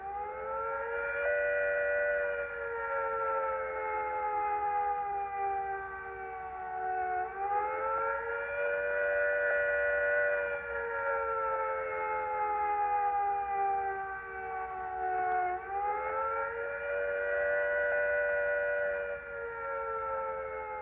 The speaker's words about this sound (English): Attacked by nuclear weapons, these are the warning sounds you must recognize. First, the attack warning. If an attack is expected, the sirens will sound a rising and falling note like this.